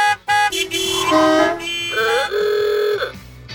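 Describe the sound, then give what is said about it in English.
Several car horns honk over one another in a loud, overlapping clamor, long blasts in different pitches layered together like a jammed street, with no voices. “Imagine if they all turned red at the same time. There'd be a ton of traffic.”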